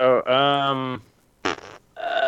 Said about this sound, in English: You got a big old fart noise.